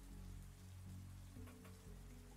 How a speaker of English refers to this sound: You hear the rain pouring against the window, with every drop sounding like hooves pounding on a battlefield onward to war.